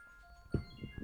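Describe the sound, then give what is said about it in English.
A phone reminder alarm, set to remind its owner to turn on the outdoor lights, plays a steady, chiming electronic tune of sustained beeping tones, with a few short low thumps and murmurs underneath. “What was the alarm for? It was actually reminding me to turn on the outdoor lights.”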